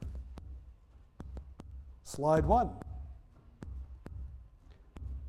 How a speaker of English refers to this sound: They've got the headphones on. The headphones are amplifying their heartbeat. And the slides are moving one after another for a few seconds each slide. And they're listening to their heartbeat.